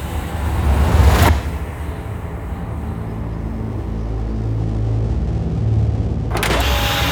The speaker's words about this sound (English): A door on the craft is opening.